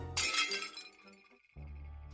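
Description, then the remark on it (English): A loud crash of a pile of clean ceramic plates thrown one by one onto a hard floor, with a sharp bright burst and tinkling shards that ring out and fade, followed by a low steady hum. “I grabbed the closest pile of clean plates next to the cupboard, and one by one, I threw them onto the ground, while swinging my arms around in the air and yelling, "Yes!"”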